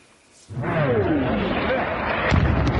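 After a brief quiet moment, a loud blast of explosions and artillery fire in Ukraine during the Russian invasion erupts into sustained rumbling roar, a falling whistle-like tone cuts through it, and a couple of sharp booms hit near the end.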